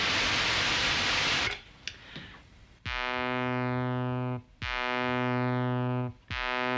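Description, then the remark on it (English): A steady burst of synthesized white noise, resembling surf or steam, hisses loudly for about a second and a half, then cuts off, followed by a few faint clicks and sustained buzzy electronic tones. “In its pure form, it sounds like surf or a steam sound. It's called white noise.”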